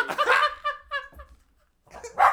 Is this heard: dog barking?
yes